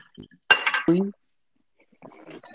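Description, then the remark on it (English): A glass clinks sharply twice in quick succession with a bright ringing tone, followed by a pause and then softer, scattered clattering like a cup being handled and set down, as someone walking around their house gets a drink of water. “I was getting a drink of water.”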